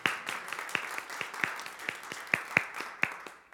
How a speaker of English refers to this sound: Yeah, we can clap to that.